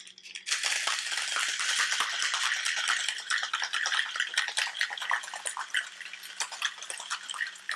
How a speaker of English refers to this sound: Grab a little bit of ice. Throw it in here. Throw a little bit of white rum on it. And we're going to shake it up.